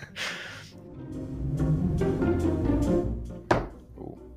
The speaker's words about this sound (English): My hand knocked my phone as I was bringing it up from under the desk where it was sitting. Broke it clean in half.